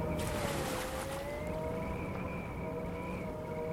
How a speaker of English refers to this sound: Just the wind left, and the steady crash of the sea.